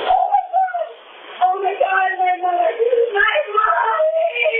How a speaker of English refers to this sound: It is then she lets loose a cry of pure anguish.